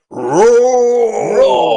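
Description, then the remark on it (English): A lion roars once in the intro of an MGM movie, a loud, rough, drawn-out growl lasting under two seconds that swells, holds and dips slightly in pitch, with no talking over it. “Immediately, we're roared at by a lion.”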